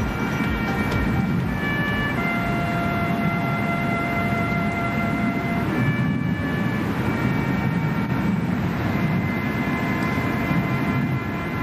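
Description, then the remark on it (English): A lone bugle plays Taps in slow, long-held notes that shift in pitch every few seconds, over a steady rumble of background noise, at the Bush Presidential Library as the 41st president is laid to rest. “Taps being played at the Bush Presidential Library this afternoon as the 41st president was laid to rest by his wife and daughter.”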